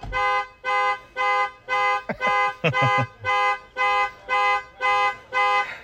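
A car alarm blares at a trapping convention in a steady pattern of loud, harmonic honking pulses, about ten evenly spaced blasts, with a few brief thumps and clatters in the middle, as a woman climbs into the driver's seat trying to turn it off.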